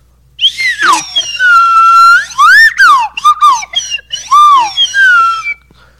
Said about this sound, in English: That was amazing the way you played like that. Thank you. You are great. Slide whistle.